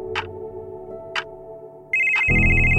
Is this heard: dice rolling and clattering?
no